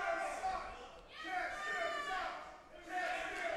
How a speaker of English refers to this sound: And the crowd is letting him know how much they admire him. You know, I enjoy the crowd here in Lumberton, but they are never correct about this stuff.